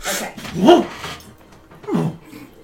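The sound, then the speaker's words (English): A large mastiff gives two short, whining barks about a second apart, moderately loud, with a faint whimpering tone and no talking. “I'm going to pull out a mastiff.”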